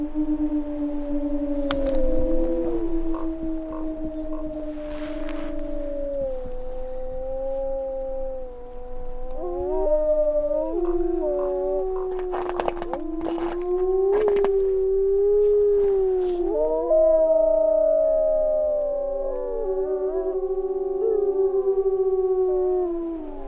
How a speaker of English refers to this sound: One of the things I often think about when we hear wolves howling is, I'm sure you know the story, that it was the last of the original Yellowstone wolves were killed in 1926, about a half a mile from where we're standing.